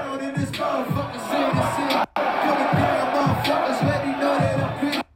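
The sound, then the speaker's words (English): A large crowd at a rap concert chants the rapper's name in unison, loud and dense, the voices rising and falling in a steady repeating rhythm with thumping bass beats as the rapper uses the chant as a beat to freestyle, briefly cutting out once partway through. “the crowd is just like, …, …, like, just, like, saying his name”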